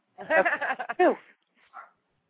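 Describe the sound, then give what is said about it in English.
The speaker's dog barks in a quick run of high, yelping barks, then gives one short, softer bark after a brief pause. “I prefer, of course my dog's going to bark now.”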